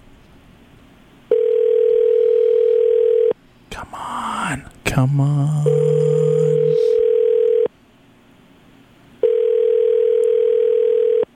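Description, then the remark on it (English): Three long, steady telephone ringback tones repeat at even intervals over a line after a number is dialed, clear and fairly loud, with a person muttering impatiently in the gap between the first and second rings. “All right, it's ringing.”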